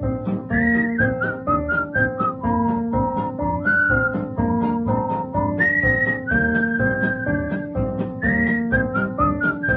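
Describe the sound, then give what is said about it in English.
A person whistles a bright, bouncy melody, the notes rising and falling steadily, with full instrumental backing playing underneath throughout. “Fisherman was always whistling such a merry call.”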